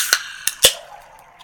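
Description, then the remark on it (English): A chilled can of nitro Pepsi cracked open to be poured hard: three sharp metallic clicks in quick succession, the last one loudest, followed by a brief, fading fizzy hiss, with no talking. “I think I'll pop and pour hard.”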